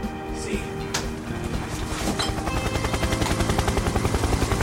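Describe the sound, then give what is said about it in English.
The rotor of Whirly, the helicopter in the Chopper Cops sketch, thumps in a steady, rapid rhythm, loud, growing more pronounced as it continues amid a dense roar of engine noise. “This is my partner, Whirly. It's a helicopter.”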